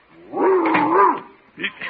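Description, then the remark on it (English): A 140-pound Great Dane lets out a long, deep, rumbling growl-like bark, followed by two quick, shorter woofs, loud. “That 140-pound Great Dane could knock down the door if he took a run at it.”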